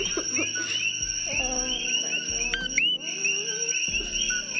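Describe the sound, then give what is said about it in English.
A frog calls amid a dense, steady chorus of high-pitched chirps and whistling tones, with occasional rising swoops standing out over a low background hum. No one speaks. “It's an amphibian. Let's just say that. Poison dart frog? No. It's a type of frog, though.”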